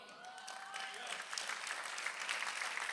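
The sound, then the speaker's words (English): A crowd breaks into steady applause, the dense crackle of many hands clapping building slightly and holding strong, with a few faint whistles or cheers rising over it early on. “Can we clap for everybody that's sober in our community?”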